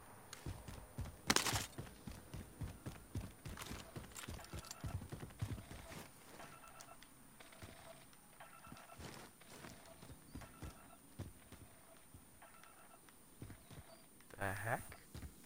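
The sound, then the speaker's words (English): A video game heartbeat sensor gives off steady, evenly spaced electronic thumps and pings, layered under busy game sounds and a brief spoken exclamation. “Oh, I've got a heartbeat sensor.”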